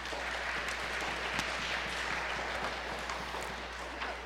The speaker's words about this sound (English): All right, before they do anything, they need some applause for courage to get up here.